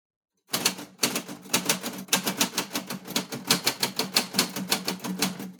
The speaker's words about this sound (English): There. That's how it's done. Amazing! Can I have the typewriter back now? What's wrong? It's still attached to the straps and my neck doesn't bend that way.